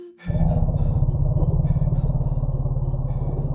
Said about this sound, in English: You see, elephants are afraid of bees and even have a specific warning call for bees.